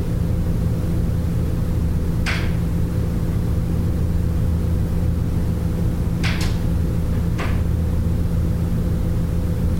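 A door clicks open or shut a few times, brief sharp knocks with one quick double, set against a steady low rumbling hum that fills the background. No one speaks.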